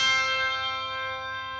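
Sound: handbells ringing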